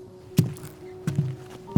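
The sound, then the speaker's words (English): A handful of dull, thudding footsteps at an uneven pace over a faint steady hum, ending in a heavier thump as a door shuts. No one speaks. “And without saying another word, he turns almost mechanically and walks through the door.”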